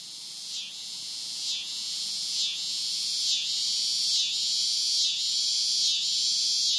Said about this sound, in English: Yes, the cicada announces the season's change like no other. I wanted to know more about cicadas and their cacophonous songs.